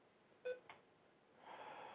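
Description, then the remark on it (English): A laptop gives a short, sharp electronic beep, followed quickly by a softer second blip, then a low steady hiss with no one speaking. “Is it going to be one of those days where the fucking laptop beeps 1,000 times?”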